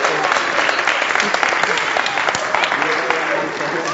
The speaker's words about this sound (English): Can we give our finders a big clap?